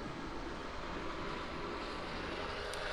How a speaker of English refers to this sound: Here comes another noisy truck carrying massive boulders.